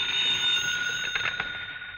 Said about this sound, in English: Your phone should ring. Soon. Soon. There it is.